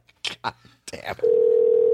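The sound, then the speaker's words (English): Brief bursts of voices give way to a loud, steady telephone dial tone after a phone call drops, a single unbroken hum that continues to the end. “Guys, I don't know what's going on with your fucking phone.”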